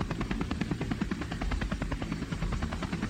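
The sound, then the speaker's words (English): Steady helicopter rotor noise heard from aboard the helicopter, with a rapid rhythmic chopping over a low engine drone, continuous and fairly loud throughout, no voices. “I'm not quite sure, you know, I'm up here in the helicopter.”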